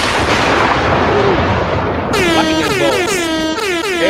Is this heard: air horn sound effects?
yes